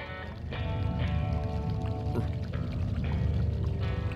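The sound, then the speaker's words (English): A thick, continuous pour of flowing, melting liquid metal, a steady gushing and bubbling rush that swells slightly after the first half-second and keeps going, loud, with no voices. “Then slowly the metal began to melt again, and streams of it closed like tender fingers around Jet's hand.”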